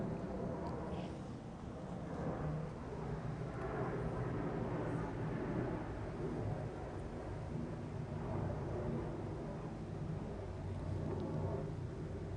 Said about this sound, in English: Show of hands, who would like for me to try and talk over the airplane? Who would like for me to wait?